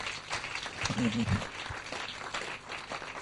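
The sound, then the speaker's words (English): An audience claps steadily for a few seconds, a dense, even crackle of many hands with no clear individual beats, and a brief voice rises faintly midway through. “If you are clapping, clap and clap well.”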